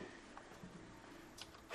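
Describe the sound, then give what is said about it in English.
A single sharp sneeze bursts out loudly at the very end after near silence, preceded by a brief faint breathy hiss. No one speaks. “Bless you.”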